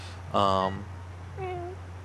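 A cat meows twice: a loud, drawn-out first meow, then a shorter, softer one after a brief pause, over a steady low background hum.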